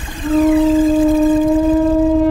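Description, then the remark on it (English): A loud, steady horn-like call sounded by Ombra to summon narwhals, on one low, sustained note with a buzzy edge. It swells in quickly and holds for about two seconds, with no voices. “Now, Ombra, call the narwhals.”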